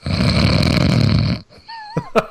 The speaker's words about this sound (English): It sounded like Orville from Carousel of Progress. Wasn't it Orville that was snoring? Is that right?